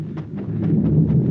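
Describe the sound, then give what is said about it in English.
A volcano about to erupt, the ground shaking: a deep, continuous rumble with low, heavy roaring that swells slightly, broken by several soft, repeated thudding bursts spaced about every fifth of a second. No one speaks. “What's that rumbling? The ground's shaking. It's a volcano. It's going to erupt.”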